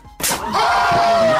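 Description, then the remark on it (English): A sharp slap rings out once, a quick bright smack followed by loud, sustained noise and a raised voice that carries on over the tail. “And on the level of slaps, it wasn't this.”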